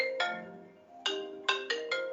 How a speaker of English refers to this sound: I'm sorry, my phone is blowing up this morning.